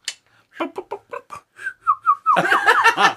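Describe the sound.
A person imitates narwhal calls with a quick run of sharp mouth clicks, then several short rising whistles, ending in a dense burst of chirpy whistling sounds, fairly loud.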